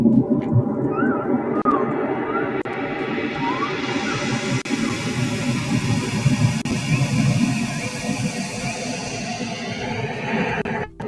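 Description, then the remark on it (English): A synthesized ocean soundscape: a dense, steady wash of noisy rumble and hiss with faint gliding whale-like tones drifting above, holding an even level for about eleven seconds with no voices. “Okay, so that's the ocean.”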